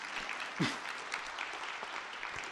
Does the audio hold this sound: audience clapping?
yes